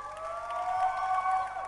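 A church audience claps and cheers together, a steady wash of applause mixed with sustained high-pitched whoops and voices, fairly loud throughout the short burst.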